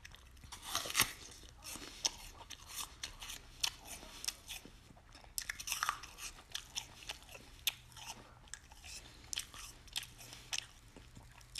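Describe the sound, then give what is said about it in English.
Crisp crunching as someone bites into an apple with really crunchy skin and flesh and keeps chewing, a steady run of sharp wet cracks and snaps repeating for several seconds with no talking. “The skin on this one is really crunchy, along with just the meat of the apple, the flesh of the apple.”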